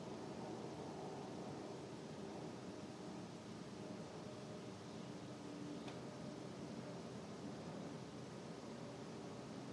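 A steady airplane drone fills the background during a silent sitting meditation, a soft continuous rumble with a hiss on top and no voices.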